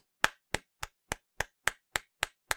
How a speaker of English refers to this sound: Golf claps, everybody. Golf claps. We did it. We have the worst record in baseball.